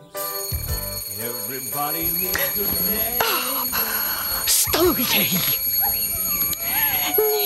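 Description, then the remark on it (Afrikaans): An alarm clock rings steadily and continuously throughout, a bright metallic jangle, while a person's drowsy murmurs and groans rise and fall over it. “Die irriterende wekker.”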